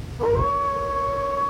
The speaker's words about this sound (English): The majestic wolf. I have a thing for wolves.